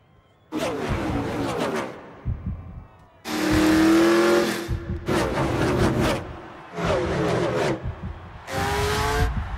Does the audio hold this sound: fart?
no